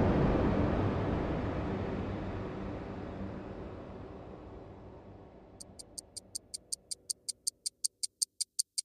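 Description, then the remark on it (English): A wash of broad rushing noise slowly fades away, and as it thins a clock's crisp ticking emerges, steady and quick, the ticks growing louder and more distinct until they stand alone. “I don't know who was the first author to pen into their writings the sound of a clock ticking. That delightful tick-tock, rhythmically dancing back and forth with perfect timing.”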